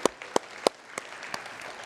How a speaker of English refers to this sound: Isn't that cool? Yeah, you can clap for that.